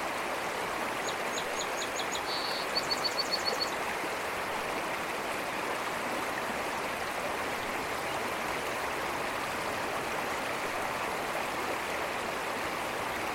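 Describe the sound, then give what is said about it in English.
A waterfall roars steadily throughout, a dense, continuous rush of water with no pauses. Early on, a few quick high bird chirps ring out in short bursts above it. “Consider this waterfall.”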